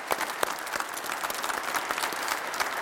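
Steady applause from a group fills the whole stretch, a dense patter of many hands clapping at moderate loudness with no voices standing out.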